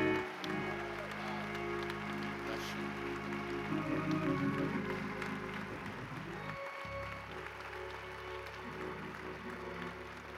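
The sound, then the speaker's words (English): A church audience claps and cheers steadily to welcome a visiting pastor, the sustained applause dense and noisy like rain, with a low musical hum underneath and a few voices calling out. “Let's give him a kingdom welcome all the way from Cape Town, South Africa. Come on and show him some love.”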